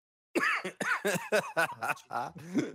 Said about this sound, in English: Another New Year's resolution for … is to not cough.